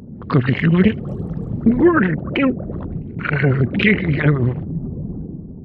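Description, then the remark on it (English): A voice imitates a gurgly underwater creature, made with a bite of Jell-O in the mouth, producing wet, bubbly warbling calls in several uneven bursts with wavering pitch, fairly loud throughout. “In order to get that gurgly sound, I would take a bite of Jell-O and make the sound of something with bubbles under the sea.”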